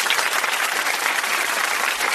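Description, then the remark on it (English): A vacuum cleaner runs steadily throughout, a loud, even hiss-like roar with no pauses and no voices over it, as it vacuums up dirt that someone walked in on their shoes. “I believe someone walked in with some dirt on their shoes, and I'm going to go vacuum that up.”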